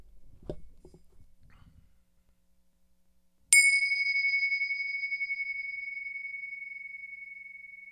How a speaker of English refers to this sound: Okay, how about we close with the bell?